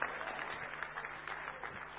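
An audience applauds a participant who has just finished a blindfolded walking exercise, clapping together in a steady, dense patter of many hands, holding an even level throughout without any voices.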